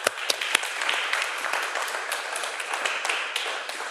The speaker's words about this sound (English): There you guys go. Thank you. Please give them another round of applause, folks.